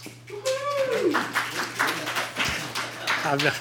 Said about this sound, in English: It's going to go downhill from here, I can tell. And if it starts out with clapping, this is amazing.